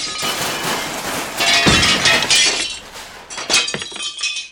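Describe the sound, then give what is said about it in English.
A car's side mirror smacks into a light pole at the back of a parking lot while the car is backing out, around 1 in the morning, and breaks: a loud crunching impact followed by bright shattering glass and scattered tinkling pieces, with a second sharp burst near the end. No voices. “I looked to the left side, and there was my mirror, just flopping on the side of the car, broken.”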